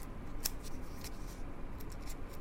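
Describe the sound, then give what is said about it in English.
The plastic wrapper of an individually wrapped cheese stick being peeled open, a run of soft crinkling and crackling with a few sharper snaps, over a steady low background hum and no talking. “Like there's the stick and it's sort of this plastic wrapper that you can peel. Let's open it up here.”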